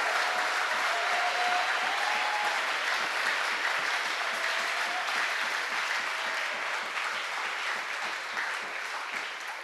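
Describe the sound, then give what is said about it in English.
An audience claps for the Lord steadily for nearly ten seconds, a dense wash of many hands applauding at a constant loud level that tapers only slightly near the end, with no voices standing out. “Let's clap for the Lord.”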